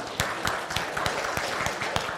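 Audience applause: a steady, dense wash of clapping with sharper individual claps standing out at a fairly regular beat, moderately loud throughout, with no voices.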